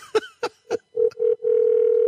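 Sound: phone call ringing unanswered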